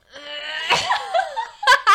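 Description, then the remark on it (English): A growling, throat-clearing cough made when unable to get phlegm up the throat, said to sound like Chewbacca from Star Wars: a raspy, wavering groan with a rough burst midway, ending in two short, harsh coughing bursts. “I do this thing when I cough and I, like, can't get, like, the stuff up my throat and it's like...”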